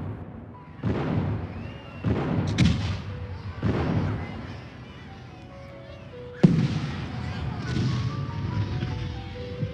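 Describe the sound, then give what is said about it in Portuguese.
Heavy cannon shots from the Santa Cruz Fortress boom from a distance across Guanabara Bay as they bombard a fort: about five deep blasts at irregular intervals, each rolling off into a low rumble, with a sharper, louder report near the middle. “Vi com espanto quando os canhões da Fortaleza de Santa Cruz, do outro lado da Baía de Guanabara, começaram a disparar contra o forte.”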